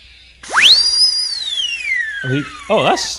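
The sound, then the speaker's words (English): A toy bird whistle, a little mouth toy, shrieks sharply upward, then glides slowly downward in one long piercing tone before breaking into short wobbling, warbling trills, blown in the mix over a song's guitar solo. “He's blowing one of those things in the mix, like, you know, one of those like little mouth toys. It's a bird you whistle.”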